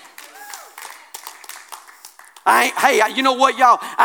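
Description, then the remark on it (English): An audience claps in a steady, scattered patter at moderate volume, and then a loud, forceful voice cuts in and speaks over the fading applause. “I ain't worried about you clapping, because what I'm telling is the truth.”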